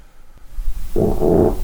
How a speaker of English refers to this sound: Oh, my God. What was that? There was a mouse on a motorcycle. It's not a mouse on a motorcycle. You farted